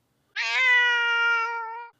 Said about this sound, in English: Oh my god, I gotta give my cat a fucking treat, dude. He's yowling and shit. He's gonna wake up and be in trouble. I give this cat snacks all the fucking time, man. He's hungry.